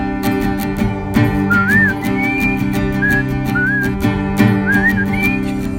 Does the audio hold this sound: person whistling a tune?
yes